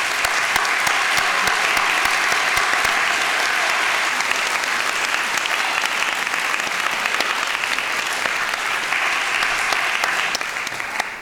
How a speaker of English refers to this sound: Another round of applause for all the participants.